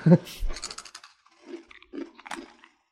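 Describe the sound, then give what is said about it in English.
Crisp crunching of firm, cream-corn-flavored corn puff snacks like crunchy Cheetos: a loud burst of bites at first, then quieter, uneven chewing crunches, with faint low vocal murmurs in between. “Is these are they're like crunchy Cheetos that are cream corn flavor.”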